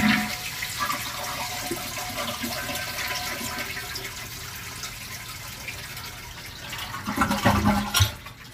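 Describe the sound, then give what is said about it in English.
A toilet is flushed after its water supply has been shut off, with a sustained rushing, gurgling drain of water as the tank empties, fairly loud, ending in a louder burst of gurgling and splashing. “Water's off. Now flush toilet.”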